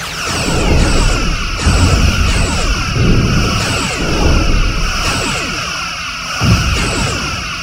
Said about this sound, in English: All weapons open fire. Firing phasers and photon torpedo.